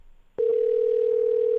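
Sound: telephone dial tone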